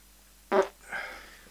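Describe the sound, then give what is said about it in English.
A short, sharp fart bursts out, followed by a softer, raspy trailing puff. “Maybe we should include the fact that you just farted and this is our outro.”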